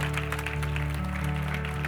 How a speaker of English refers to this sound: Give them a big hand clap if you will.